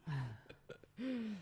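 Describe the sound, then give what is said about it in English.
A person sneezes: a voiced gasping intake, a few small catches, then a loud, drawn-out vocal burst, all heard on its own without talk. “God bless you.”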